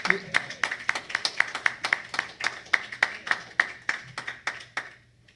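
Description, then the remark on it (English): A church audience claps in praise of God in a steady, fairly quick rhythm, sharp hand claps ringing out clear for several seconds before stopping, with faint voices underneath. “Give God a hand clap of praise, because I know you do it.”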